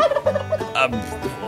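A turkey gobbles in a rapid, warbling burst of throaty notes, loud, lasting about a second and a half with no voices around it.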